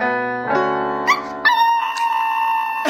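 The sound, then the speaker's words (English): A dog howls along as a girl sings karaoke, its long wavering cries rising and sliding in pitch over sustained vocal notes, loud throughout the short stretch. “The dog keeps going.”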